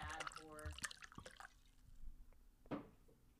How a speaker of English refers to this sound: Oh, she's pouring herself some wine. She finished her marg. Oh, yeah. Listen to that pour.